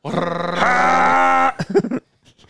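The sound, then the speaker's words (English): A voice imitates a motorbike engine with a buzzy, sustained rumble that steps up in pitch as if revving, then breaks into a few short sputtering bursts before going quiet. “What do you think that bike sounds like?”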